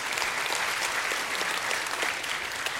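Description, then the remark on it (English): A crowd applauds steadily, a dense wash of many hands clapping at once, fairly loud and sustained throughout with no voices standing out. “Yeah, you can clap for that. You can cheer for that.”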